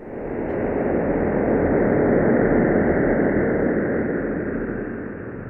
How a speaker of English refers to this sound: And there was a sonification, turning the image the EHT collected into sound. I want to play a selection of that and have you tell us what we're hearing.